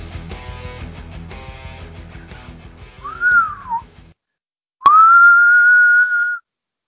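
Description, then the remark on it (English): Someone whistles a short tune fragment from a movie: a brief falling note that trails off as background music ends, then after a pause a long, loud, steady held note. “I was trying to remember the whistle from that movie”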